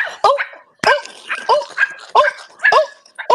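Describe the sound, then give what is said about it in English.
A person imitates a dog, letting out a quick series of six or so loud barks in a steady rhythm, each a short voiced yelp with little pause between them. “He wants you to hop on one leg and bark like a dog.”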